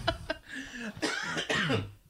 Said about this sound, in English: couldn't imagine why I'm coughing so much.